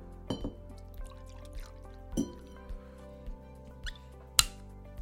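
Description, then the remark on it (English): A pour of Bullet whiskey goes into a glass in a soft, steady trickle, punctuated by a few light clinks and taps, with a sharper click near the end. No one speaks. “Take a little pour.”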